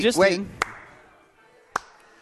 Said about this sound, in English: Are you clapping?